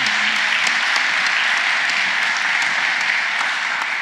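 Steady applause from an audience fills the room, a dense, even wash of many hands clapping at once without pause for several seconds.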